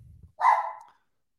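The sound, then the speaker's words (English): A single sharp bark from Mocha, the dog, rings out, loud and slightly drawn out, following a brief low rumble, then silence. “For the third consecutive show, I can't get to a show without my dog barking.”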